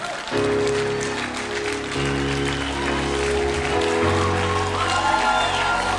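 A church audience claps hands for Jesus steadily over sustained keyboard chords, the clapping forming a dense, continuous patter above the music at a loud, even level.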